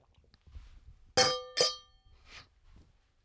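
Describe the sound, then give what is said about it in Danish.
Two bright glass clinks about half a second apart, like wine glasses touching in a toast, each with a short ringing tone that fades quickly. Faint rustling fills the quieter moments before and after. “Skål for Norge.”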